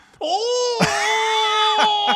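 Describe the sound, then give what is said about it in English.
A loud, strained vocal retching noise, a drawn-out groaning heave with a few sharp gulping breaks, as someone imitates vomiting. “You go, haruto, haruto. Oh, that's me vomiting.”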